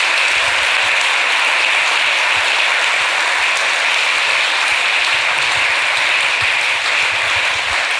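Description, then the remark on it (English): An audience at a talk applauds steadily for several seconds before questions, a dense, even wash of many hands clapping at once with no pauses and no voices standing out. “Little round of applause before we get to questions.”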